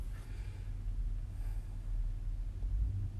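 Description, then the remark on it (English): Heavy bass thumping from a car stereo, a deep, steady low-end throb that fills the whole few seconds with little above it and no one talking. “Somebody's bass in their car is so loud right now.”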